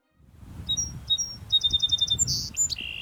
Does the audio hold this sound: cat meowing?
no